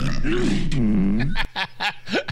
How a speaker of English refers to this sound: Wendy Williams almost gave us a burp snort. That's what that was, I thought.